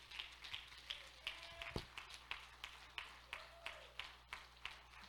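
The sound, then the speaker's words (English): An audience claps in unison to a steady beat, roughly two sharp claps per second, fairly soft, with a faint low hum and brief tonal sounds underneath and no talking. “Clap your hands.”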